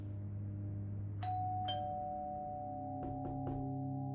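A doorbell at a family house's front door chimes a two-tone ding-dong, then three more quick strikes, each tone ringing on and overlapping above a steady low hum, as a police officer calls at the door on September 29th, 2016.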